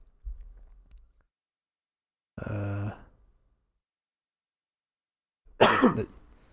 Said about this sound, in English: Sorry. just cough on the mic, man. It's fine.